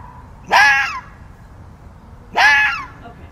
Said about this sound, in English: Foxes sound like a woman screaming. If that woke me up at 1:30 in the morning, I would probably call 911. Have you never heard a fox? Oh, it's terrifying.